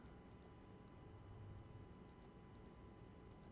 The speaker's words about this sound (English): I'm clicking the buttons.